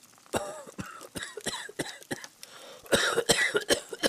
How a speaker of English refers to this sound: coughs several times into a white handkerchief, then pulls it away from his mouth, revealing blood on it